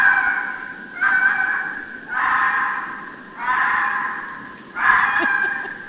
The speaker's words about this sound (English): This is the answer. This is what foxes sound like.